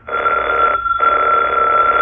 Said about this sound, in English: did that phone ring? Yes.